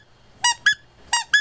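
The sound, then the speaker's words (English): Four sharp, high-pitched squeaks from a dog's squeaky toy, recorded, in two quick pairs, loud with nothing else but faint background. “I recorded my dog's squeaky toy for that.”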